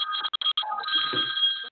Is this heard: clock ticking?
no